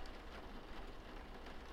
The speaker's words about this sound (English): The rain patter on the windows.